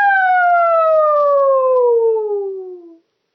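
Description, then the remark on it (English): A single loud, sustained vocal wail imitating an ambulance siren, sliding slowly downward in pitch over about three seconds before cutting off, performed alone without other talk. “Let's do some fire alarms or ambulance sounds.”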